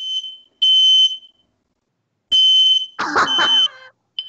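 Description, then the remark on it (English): A fire alarm blares in loud, shrill electronic beeps, sounding in repeated bursts with short gaps. A harsh, noisy clatter briefly overlaps one burst near the end. “The hotel's on fire.”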